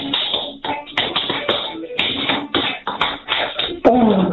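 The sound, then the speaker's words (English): Rapid, rhythmic tap dancing steps clatter in quick succession, sharp metallic taps landing loud in a lively, irregular pattern with no talking. “Tap dancing to the Grange Hill thing.”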